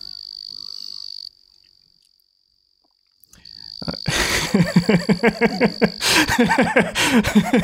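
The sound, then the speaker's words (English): A frog gives a thin, steady insect-like trill that stops, returns, then breaks into loud, rapid, clicking chatter, a series of quick pulsed calls. “This is the most insect sounding frog.”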